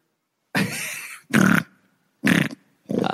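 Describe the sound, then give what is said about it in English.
A pig on a farm grunts loudly, heard over the phone, four coarse, snorting bursts in an uneven rhythm with short silent gaps between them, and no talking. “All right. That's you for sure. All right. Pass it to the next pig.”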